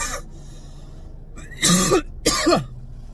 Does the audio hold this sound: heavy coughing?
yes